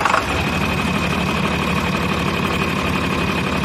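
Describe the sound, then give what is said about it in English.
A John Deere tractor engine starts and rumbles, settling at once into a loud, steady idle with a low, throbbing chug that holds evenly throughout, with no voices. “I got you a little John Deere tractor sound.”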